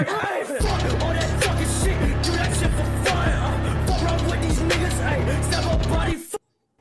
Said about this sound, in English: Oh, yeah, it's too whack. It's too whack. It's pretty aggressive, hey? Yeah. Whoa, that's pretty scary. That's like scary music.